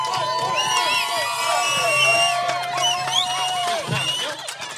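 A crowd cheers and applauds for several seconds, with overlapping high whoops and shouted voices riding over steady clapping, staying loud throughout before easing slightly at the end.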